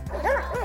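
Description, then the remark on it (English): A single deep, raspy bark from an Old English Sheepdog rings out fairly loud, with a rough, gravelly edge to its rising and falling tone. No other sounds accompany it. “A marked characteristic of this buoyant breed is its bark, which some describe as dark and gravelly.”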